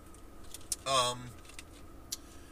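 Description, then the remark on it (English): Quiet interior of a parked car, with soft clicks and a jingle of keys, then a short buzzing, tonal burst near the middle before the hush returns. “I guess I'm now sitting in my car with an awkward amount of time before I'm supposed to be at Dude's house to play, so I figured I'm just going to go ahead and keep recording.”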